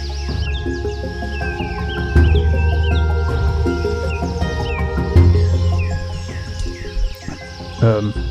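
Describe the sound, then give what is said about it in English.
Birds chirp steadily in a large, green forest, with many quick overlapping calls from several directions over a soft, low background rumble, as a light wind blows through. “Hear birds chirping.”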